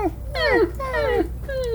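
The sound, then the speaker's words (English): A person's voice softly imitates a whining family dog: three high, thin whimpers, each sliding downward in pitch, fairly steady in loudness, with no words spoken. “I'll just be whining back here softly to myself. Like the family dog.”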